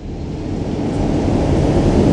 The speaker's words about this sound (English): A large gust of wind rose up and made a whooshing noise against the window.